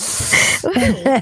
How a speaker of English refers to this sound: Are you sneezing? I got the corona.